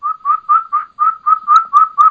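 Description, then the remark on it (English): A wild turkey hen's kee-kee calls: a fast, steady series of about nine clear, high whistled notes, flute-like and fairly loud, with no talking. “Okay, now those are the kikis coming back, but you can hear that hen just out there.”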